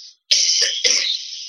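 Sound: cough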